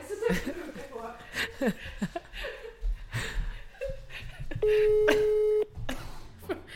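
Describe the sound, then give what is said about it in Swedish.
A single steady telephone ringing tone, about one second long, sounds clearly between bursts of chatter and light laughter, and the call goes unanswered. “Han är förmodligen upptagen.”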